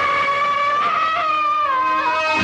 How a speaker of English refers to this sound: Do you hear that? It's the scream of a woman having a nightmare. I love you so much. That is the voice of a woman asleep, dreaming.